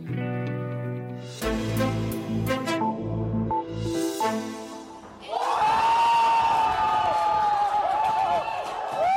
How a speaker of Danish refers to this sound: Det, vi hørte her, det var jubel hos det hollandske midterparti D66 onsdag aften. Faktisk så var partiets leder, hun hedder Sigrid Kaag, hun var oppe at danse på bordet af begejstring,